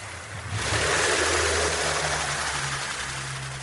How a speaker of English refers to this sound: and somebody way in the distance started a little outboard motor on a little skiff and went driving away and completely drowned out all the recording I was trying to make.